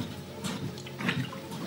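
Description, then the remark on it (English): Soft gurgling of water being poured or drunk, a brief run of liquid burbles and small splashes with no talking. “Anyway, more water.”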